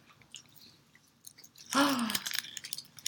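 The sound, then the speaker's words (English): Chewing of a soft, white, cola-flavored chewy candy: quiet wet mouth sounds, then a louder burst of smacking mastication partway through with a brief hummed murmur, continuing unevenly to the end. “If you picked it up and saw it, you would think it was a Starburst.”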